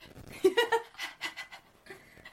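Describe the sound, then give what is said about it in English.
A voice imitates the slow, steady breathing of someone who has fallen asleep with a book open: a few soft, airy puffs in a loose rhythm, fairly quiet, after a brief voiced, laugh-like sound at the start. “Because you're really trying to have that steady breathing that shows that you're asleep.”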